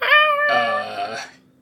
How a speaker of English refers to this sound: It's happening. The cat. Yes, you can hear her.